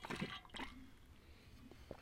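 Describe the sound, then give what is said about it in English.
Someone takes a couple of quick, wet sips of water, followed by faint swallowing clicks and soft mouth sounds amid otherwise quiet. “I'm gonna be, like, sipping water throughout the episode because your girl can't breathe.”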